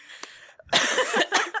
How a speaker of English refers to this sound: I'm sorry I'm coughing so much, everyone.